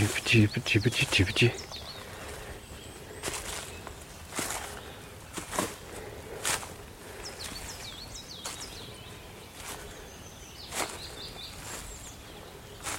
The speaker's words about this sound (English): This is perfect Red Star country, sort of slightly more open, but with a few stone walls and big old trees. Sounds like a coal tit.